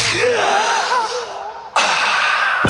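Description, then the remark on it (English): A loud, breathy vocal passage in a song ends in a sudden, sharp gasping breath that cuts in abruptly and holds, harsh against a music backdrop. “Whenever I think of gasping, it's that line right there.”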